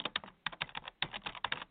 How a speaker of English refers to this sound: Just a couple clicks and a little typing.